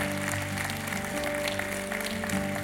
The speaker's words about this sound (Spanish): Un aplauso al Señor por ello.